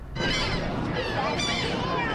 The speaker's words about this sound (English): A noisy scattering of seagulls.